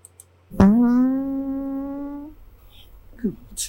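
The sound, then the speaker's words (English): A single long, loud fart with a steady buzzing tone that creeps slightly upward in pitch, lasting almost two seconds before trailing off, followed by a couple of faint short noises. “Sorry, I farted.”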